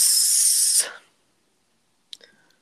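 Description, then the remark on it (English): A person makes a long, loud hissing sound imitating a snake for nearly a second, then silence, followed by a brief faint vocal noise. “I said, okay, snake.”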